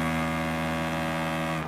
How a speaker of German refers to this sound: Das ist jedes Mal das wunderschöne Nebelhorn. Das, Ja. da geht einem das Herz auf.